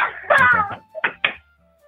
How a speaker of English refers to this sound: Okay. I heard a door close. Yeah, now she's banging on the door.